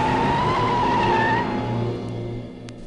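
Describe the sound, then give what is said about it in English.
Tires squeal in one sharp, steady screech over a roaring car engine as Judge Doom's car speeds off into the night, then the squeal cuts out and the motor rumbles on, fading a little as the car speeds away. “Judge Doom grabbed him, threw him into his car, and sped off into the night.”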